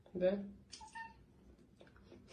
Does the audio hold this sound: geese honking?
no